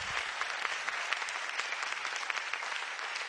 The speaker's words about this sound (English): Come on, give the Lord a hand clap of praise in the house today. Amen.